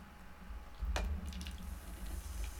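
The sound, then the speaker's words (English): Coca-Cola Dream World soda fizzes softly after a pour, a steady crackle of tiny bubbles with a brief louder splash near the start, over a low background hum. “You can hear the fizz on that, and I love it.”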